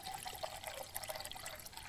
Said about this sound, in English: That is just water going into a pot, I promise you, listeners.